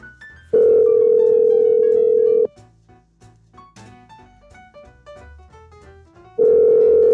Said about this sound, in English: If she answers the phone. If she answers the phone. Let's give her a call.